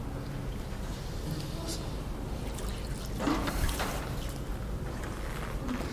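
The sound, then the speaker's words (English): Water sloshes back and forth in a tank as a wave, made by pushing the water to one side, travels across it: a soft continuous splashing with a louder surge around the middle, over a steady background hum. “Okay, so I've created this wave. It sloshes back and forth.”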